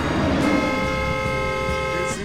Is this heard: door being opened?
no